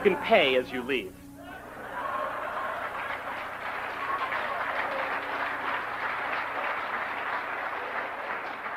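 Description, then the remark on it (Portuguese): A brief voice at the start gives way to steady, sustained audience applause as a stand-up comedian leaves the stage, a dense wash of clapping that holds at an even, fairly loud level to the end. “Ele sai de cena sob aplausos e sem agradecer nem se despedir, como muitos humoristas de palco costumam fazer.”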